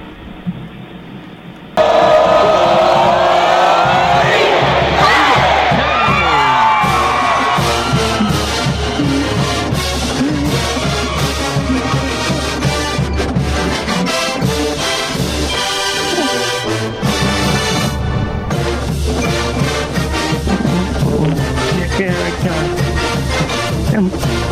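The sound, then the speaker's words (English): After a brief quieter opening, Auburn's "War Eagle" college football fight song bursts in: a loud, brassy marching band plays a driving, upbeat tune with cheering mixed into the full sound, continuing steadily to the end. “All right, let's do the War Eagle fight song and get out of here.”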